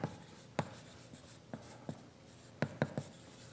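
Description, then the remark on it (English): The word "hammer" being written on a board: a quick, irregular series of sharp taps and scratchy strokes, with a short pause between clusters, and no talking. “And I can give you a tool to think about by writing hammer.”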